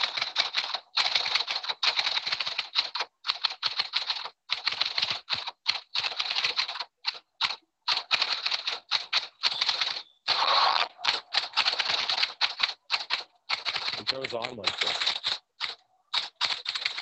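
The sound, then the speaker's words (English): A woman types a message on a computer keyboard: rapid, continuous clacking of keys, fairly loud, with brief pauses between bursts of keystrokes and no voices. “Oh, her typing's a little loud,”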